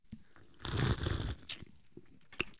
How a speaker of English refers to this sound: Okay, so we got to take a sip. Yes, cheers. Cheers. Cheers. Oh, yes, yes, yes. And then we take a sip and let them hear it.